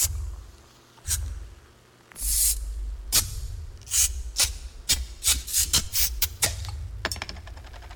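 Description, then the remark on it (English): A rapid series of beer bottles being opened as sound effects in a 30-second Bud Light radio commercial, each a sharp pop or crisp hiss of escaping gas, about a dozen in quick irregular succession over a low rumbling bed, with no talking. “But this is a 30-second commercial, so here's some sound effects of bottles opening.”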